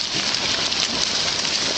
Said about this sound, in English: That might sound like rain, but it's actually fish. Hundreds of invasive Asian carp launching themselves through the air along the Mississippi River.